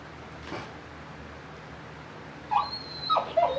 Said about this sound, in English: Yeah, when dogs are hyped up, that's probably not a good sign.